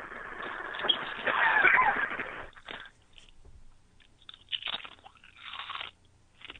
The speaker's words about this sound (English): Are you eating? I can't hear you because of crunching. You eating chips?